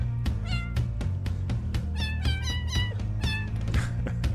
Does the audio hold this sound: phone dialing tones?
no